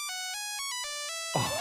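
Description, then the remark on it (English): The original ringtone of an early brick-style Nokia phone plays a quick, bright monophonic melody of beeping tones, clear, before a brief burst of noise cuts in at the end. “So the original ringtone potentially sounding like this.”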